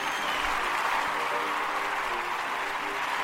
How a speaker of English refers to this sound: Thank you for joining us today, and I'd like to give you a round of applause.